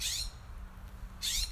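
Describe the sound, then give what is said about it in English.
Two short, harsh bird calls ring out at the start and end, bright, with a low steady rumble of outdoor background between them and no talking, as smoke clears on a blue day. “The birds are coming back as the smoke clears up.”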